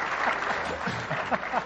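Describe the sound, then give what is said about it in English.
A short burst of steady audience applause, many hands clapping together in a dense, even patter, with faint voices murmuring underneath. “One thing that that's probably worthy of applause.”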